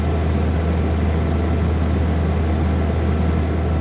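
The condenser fan of an old, broken refrigerator with its back panel taken off whirs steadily over a deep, constant motor hum, with a broad airy rush and no pauses or changes in level throughout; recorded with a phone.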